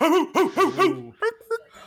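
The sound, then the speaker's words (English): A person imitates a dog barking: four quick, loud, voiced woofs in a steady rhythm, followed by two shorter yips. “Bark, bark. Bringing out the big guns.”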